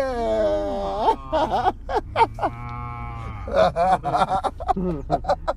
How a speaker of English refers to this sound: That was a cow